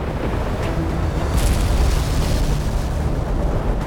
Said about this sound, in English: A little after 2 a.m., the sound of cracking timber filled the ship as the hull slammed into the rugged shoreline of an island at the bay's mouth.